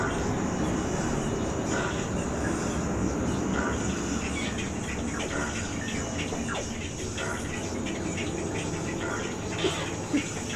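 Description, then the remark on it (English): A low, sputtering, flatulent engine drone from an approaching airship in the air, with a bunch of paddles on its side, seen just below tree boughs; the drone holds steady throughout, a thick rumbling hum with faint chirps flickering above it. “You also hear something that sounds like it's getting closer. And it sounds... an airplane. Actually, it does sound like it's in the air.”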